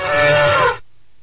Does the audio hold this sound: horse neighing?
yes